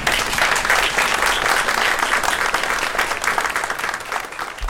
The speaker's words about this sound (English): And they deserve our pride, our respect, our gratitude, and you know what they deserve? Our applause.